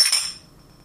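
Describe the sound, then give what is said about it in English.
Glasses clink together in a toast: two quick bright chimes in close succession, high and ringing, fading out over a fraction of a second with no voices. “You can't not drink when you toast.”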